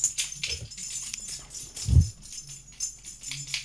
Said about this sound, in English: Dude, tell that dog to chill. Can you hear him? Oh, yeah, dude. Dude, he's like scratching his fleas or something.